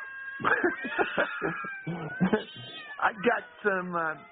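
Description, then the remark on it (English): A house cat meows several times in drawn-out, wavering cries, loud, while a person talks over and between the meows. “Sorry, get some cats out. I thought my cats were better.”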